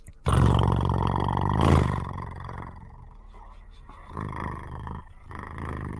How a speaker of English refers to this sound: Also sounds like a Model T associated with it.